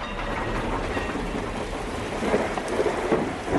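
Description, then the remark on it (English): Steady, dense rainfall hisses across the whole stretch, with a low rumble of thunder rolling underneath and swelling slightly toward the end. No voices. “Typical sounds you might hear on the Earth. Trains or surf or thunder.”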